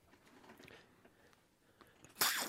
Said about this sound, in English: No fizz on top, but I'm passing it over. Give it a big, loud slurp for us.